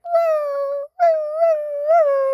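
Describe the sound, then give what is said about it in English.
A person imitates a whimpering dog with two long, high, tonal whines separated by a brief pause, each wavering slightly in pitch. The voice is fairly loud, with no other sounds. “Also, I can speak dog.”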